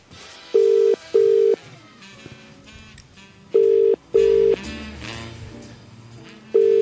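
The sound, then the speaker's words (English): A telephone ringing tone sounds in steady, mid-pitched double pulses, two short beeps, a pause, then another pair, repeating loudly over a faint, busy background with no one speaking. A call is being placed to a shop, Rose, Birds and Cycles. “Well, there's only one way to find out, and that's by giving them a call.”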